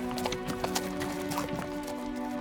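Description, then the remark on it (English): Horses' hooves clatter in quick, uneven bursts of clip-clopping as a caravan of horses gallops at night into the dark, empty desert toward Chalk Hill, moderately loud, over a steady low humming drone with no one talking. “A caravan of horses galloped into the dark, empty desert toward Chalk Hill, where Saturnino Barella had seen Albert's wagon tracks veer off the road.”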